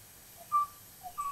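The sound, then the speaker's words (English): A male Kauai o'o, the last male of its species, sings on Kauai: two short phrases, each a soft low note followed by a clear, sustained whistled tone, fairly quiet against a faint background with no voices. “This is a song recording of a male o'o singing on Kauai.”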